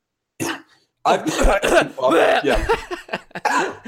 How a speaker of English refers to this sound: It's sniffle edition for a reason, my friend. Except now the coughs are back.